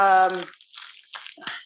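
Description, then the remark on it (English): A brief voiced sound opens, then water is poured into a small film sleeve used as a little vessel, in short, splashy, dripping bursts, moderately loud, before the sleeve is fastened up. “So you can just add water right in there before you fasten it up.”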